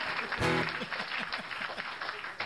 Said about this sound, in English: thanks for putting that applause sign up. That's awesome, man.